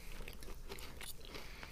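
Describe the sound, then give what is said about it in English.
Crunching as someone bites into a crisp Choc Chip Tiny Teddy biscuit, with several sharp crackly bursts over a couple of seconds and no talking. “Sounds like it's got a good crunch ratio.”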